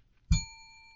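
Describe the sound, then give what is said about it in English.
A single bright bell strike, used as a sound effect, rings out once and then sustains, its clear metallic tone slowly fading over the following second. There is no talking, only quiet background. “To help me control my rowdy panel of recidivists and reprobates, I will employ what I have called the inappropriate bell.”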